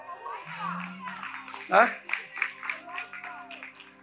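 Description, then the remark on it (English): An audience at a church service claps in a loose, uneven burst that swells partway through, giving the Lord praise, with scattered voices calling out over the applause. “Some of you didn't hear that because some of you didn't clap.”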